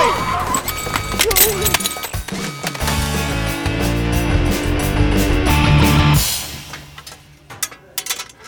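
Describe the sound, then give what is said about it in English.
A Cicada car slams into a wall with a loud, sustained crunch of grinding, ringing metal that lasts several seconds, then cuts off, leaving a few scattered clatters and rattles of debris. “The Cicada is crushed.”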